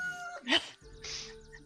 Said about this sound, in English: And wake up the next morning as the sun begins to rise. And as always, the damn rooster noise.